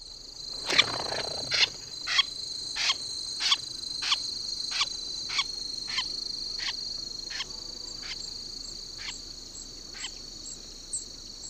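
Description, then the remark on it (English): A Wilson's snipe, scared off the ground, flushes with a sudden harsh, rasping call and a brief flutter of wingbeats recorded close to the microphone, followed by a dozen evenly spaced short notes that slowly fade over a steady high insect drone. “First, let's listen to the snipe's flush call when scared off the ground.”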